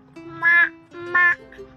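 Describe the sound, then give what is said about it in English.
A child's voice imitates a carabao (water buffalo) with two drawn-out, nasal, bleating calls, separated by a short pause. “Sound of a carabao?”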